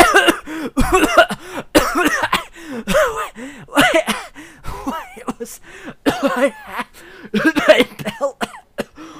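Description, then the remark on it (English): A woman coughs and sputters over and over in rough, ragged bursts, with gasping breaths between them as she catches her breath after a magic belt yields, fairly loud throughout. “Hilda is just coughing and sputtering as she catches her breath post belt.”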